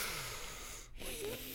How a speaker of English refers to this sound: Let's put your head to your chest, your chin to your chest, I'm sorry. Inhale through the nose, tilt the head upward.